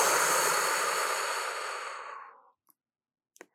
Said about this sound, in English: Before we dive in, let's all take a breath. Let's do it. So deep breath in and just exhale on your own time.